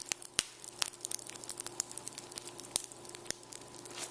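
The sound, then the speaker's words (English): Lowry's hot and crispy pork rinds crackle and pop after 2 minutes of microwaving, a steady run of sharp, irregular snaps and ticks over a faint sizzling hiss, with no voices. “It continues popping even after you microwave it.”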